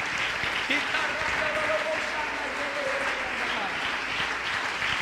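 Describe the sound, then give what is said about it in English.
A crowd claps steadily and loudly, mixed with scattered shouts and cheering voices, as people clap their hands and shout that they have the joy; a dense, continuous wash of applause filling the building throughout. “I wish somebody jumped your feet, clap your hands and shout, I got the joy.”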